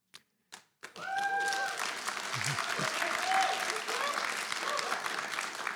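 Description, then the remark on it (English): An audience breaks into sustained applause after a talk about the budget, starting with a few isolated claps and becoming a dense, steady patter of many hands that holds at a fairly even loudness to the end. “I never got applause in my family budget talks.”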